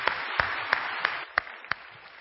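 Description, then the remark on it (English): A church audience applauds steadily, with one louder pair of hands clapping in an even beat, about three claps a second. “Yeah, go ahead and give a clap, round of applause.”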